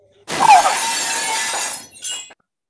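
A window pane shatters in one loud, sudden crash, the glass breaking apart for about two seconds before a brief final tinkle of falling shards. No voices are heard.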